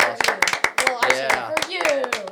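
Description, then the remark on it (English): A small group of hosts claps in quick, uneven bursts, about a dozen sharp slaps over two seconds, with voices cheering and talking loudly underneath the applause. “Yeah, I think that deserves an applause.”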